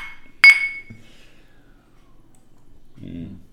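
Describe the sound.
A single sharp clink of glasses touching in a toast, bright, its high ringing tone lingering for about a second before a voice murmurs briefly at the end.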